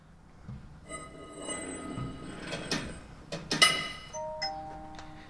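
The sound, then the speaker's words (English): A heavy door is hauled open, its hinges giving long metallic creaks and squeals, with a few scraping thuds near the middle. No one speaks. “Come on, give me a hand with this door”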